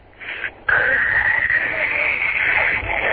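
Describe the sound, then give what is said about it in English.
A voice imitates a creaky door swinging open: a brief strained squeak, a short pause, then a long, loud, grating creak held steady at a high pitch for a few seconds. “Why didn't you open up that creaky door?”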